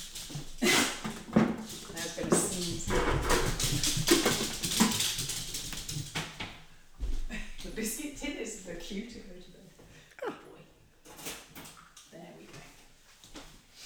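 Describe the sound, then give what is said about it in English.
A small mechanical walking toy dog whirs and clicks along while letting out repeated high, tinny yaps, fairly loud, with people talking around it. “It's supposed to be a dog. It's sort of a dog.”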